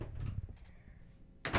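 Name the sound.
door shutting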